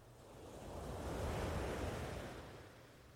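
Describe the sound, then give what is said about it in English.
A single ocean wave swells and breaks on a sandy beach, its broad hiss rising to a peak and then washing away. Steady, with no voices present. “Focus on the sound of the waves now.”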